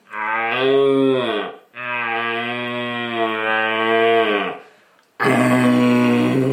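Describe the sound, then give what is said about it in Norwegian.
A person imitates a deep, rough rutting roar with their voice: three long, loud, growling bellows, each held for over a second, with brief pauses between them and no talking. “Altså hvis jeg drar på med sånn her grovt brøll, så får du, du får jo kanskje et enda kraftigere brøll tilbake igjen, men du vil jo sjelden få den inn på lokk da”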